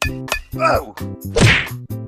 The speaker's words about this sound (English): Watch as I bash him in the face with this baseball bat.